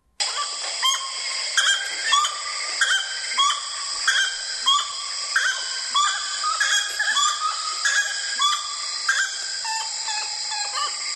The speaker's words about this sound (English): I think it's the gray-necked wood rail or the Saracura tres poches.